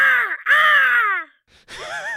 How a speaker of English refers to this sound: Crows for hire, for when you need crows for something. Call today, and we'll get you sorted out with the best and the brightest fowl that we have.